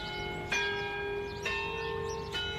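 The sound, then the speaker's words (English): The town clock near Memorial Park in Westport strikes the hour: three slow, evenly spaced strokes, each loud clang leaving rich, sustained overtones that hum on between blows, with no voices present. “As the town clock near Westport's Memorial Park marks out the hour,”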